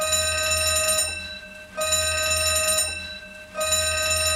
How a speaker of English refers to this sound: Fire alarm. Ah. Everybody's got to evacuate. Everybody gets out.